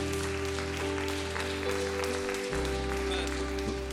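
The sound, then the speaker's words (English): An audience claps in a dense, steady burst that lasts the whole stretch, layered over a sustained keyboard chord whose low notes shift partway through. “And we can clap, but let's live it on a Monday, okay?”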